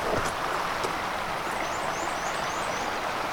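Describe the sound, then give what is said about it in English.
Shallow water of a small, fast-flowing river rushes and babbles steadily over stones, a continuous bright burble with no pauses, while faint chirping birdsong rises now and then in the background. “River is a generous term for what this is at this point, but it is fast flowing today.”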